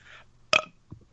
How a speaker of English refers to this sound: I was trying to do a bigger burp than that, but yeah, that one will have to suffice. Sound a bit like anticlimactic, even though there was only about a half a second of build-up.